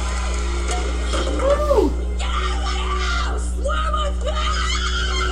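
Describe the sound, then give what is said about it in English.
A woman screams in several rising and falling bursts, shrill and strained, over a steady low electrical hum, with a few shorter cries trailing off toward the end. “Why is Nora screaming?”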